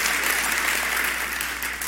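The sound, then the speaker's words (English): A crowd of people applauding the worship team, a dense wash of clapping that stays loud and even for a couple of seconds. “Come on, can we give it up for the worship team? Come on, yeah, what a great job, right?”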